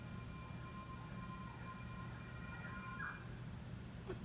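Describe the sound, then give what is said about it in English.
A faint, odd siren wails in thin wavering tones over a low steady hum, with a brief rising swoop near the end before a sharp click cuts in. “That was a different kind of siren.”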